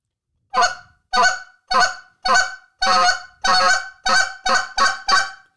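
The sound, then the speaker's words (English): A goose call blown in a rapid series of about ten short, harsh, clipped honks, the quick spits imitating one of a goose's most aggressive notes, loud, in quick uneven succession with brief gaps and no talking. “I notice myself using quick spits, and that's one of the most aggressive notes that a goose makes”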